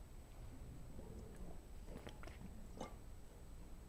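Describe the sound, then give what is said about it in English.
Someone takes a quiet sip of water: a few brief, soft wet mouth and swallowing sounds over low room noise, with no talking. “Well, as you ponder that, I'll take a little sip of water.”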